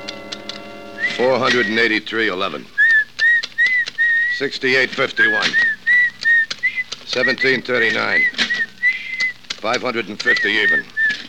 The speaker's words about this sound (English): Look, stop that creepy whistling, will you? I'll fix your whistle so it'll never blow again.